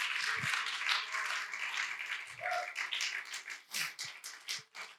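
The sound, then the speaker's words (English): A crowd claps hands to the Lord in a dense, ongoing burst of applause, with scattered louder claps and faint voices mixed in throughout. “Would you clap your hands to the Lord today?”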